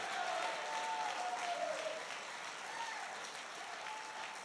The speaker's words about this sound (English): If you know that tonight, clap your hands again. Give God a mighty, mighty shout.